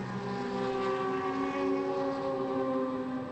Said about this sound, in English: Great to hear those Porsches just blazing past us.